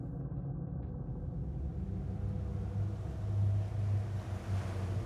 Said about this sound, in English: What is that? Can you hear the ocean? I think it's coming from that piece of art on the wall over there.